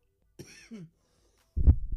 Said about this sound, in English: Whoa. I was mid-cough there and hit the fucking... I'm sorry. Headphone listeners.